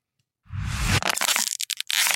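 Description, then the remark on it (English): A plastic water bottle being scrunched up: a loud rush of crinkling and crackling, then a run of sharp, irregular pops and snaps as the plastic buckles, with no voices. “Scrunching up a drink bottle like a water bottle.”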